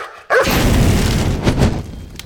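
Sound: dog barking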